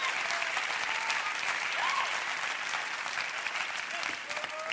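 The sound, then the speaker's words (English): An audience claps their hands in a dense, steady burst of applause that fills the whole stretch, loud and unbroken, with faint voices scattered beneath the clapping. “Come on, I think we ought to clap our hands real big.”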